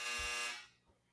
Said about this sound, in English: My God. That's my dryer.